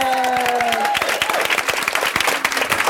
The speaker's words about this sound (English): Thank you all for participating. If I could, I'd like to get a round of applause